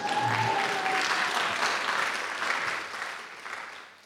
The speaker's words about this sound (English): You can now give yourself a warm round of applause.